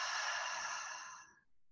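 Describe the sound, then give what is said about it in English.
A single heavy, airy breath in through the nose and out, taken during a mindfulness breathing exercise, a steady rush of air lasting just over a second before tapering off into silence. No one speaks. “I heavy breathe there.”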